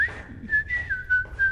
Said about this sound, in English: I have to whistle or else I get scared.